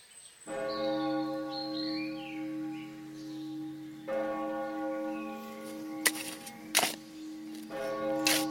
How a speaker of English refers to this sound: Ah, that cursed bell again. That means another poor soul has fallen from this foul pestilence. That makes 6 today, and over 20 since Monday.